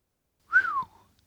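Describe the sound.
A single short human whistle from a man, sliding gently downward in pitch like a low, sympathetic whistle, alone against silence, as he walks slowly around a damaged car in a car park.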